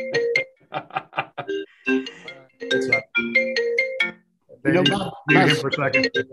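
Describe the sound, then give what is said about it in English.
A phone ringtone plays as a bright, melodic pattern of quick repeating electronic notes, fairly loud and clear, followed by a short burst of voices near the end. “That's Bill Brock Bowers calling right now.”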